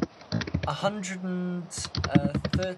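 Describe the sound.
Quick bursts of clicking keystrokes on a computer keyboard, fairly loud, with a brief sustained voice-like hum breaking up the typing in the middle.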